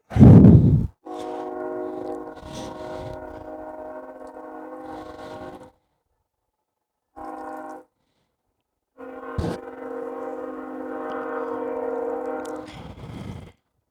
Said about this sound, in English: There's another fucking train. Good God.